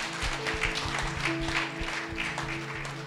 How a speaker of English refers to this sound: Можем мы прославить Господа сейчас похлопать? Can we praise God by clapping right now?